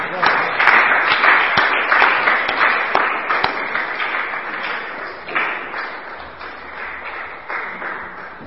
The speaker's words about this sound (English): Let's just give them another clap.